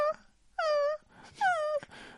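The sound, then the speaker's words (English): A person vocally imitates a dog moaning in distress, as heard from a distance: two drawn-out, whining wails that sag slightly in pitch, separated by a short pause, loud, with no other talking. “Dog, just fucking moaning.”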